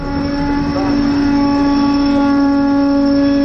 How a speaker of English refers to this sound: All right, I'll get to about 28 miles per hour, and I'm bringing it up. Feel how fast we're going, and now... Whoa! And we receive the penalty brake application.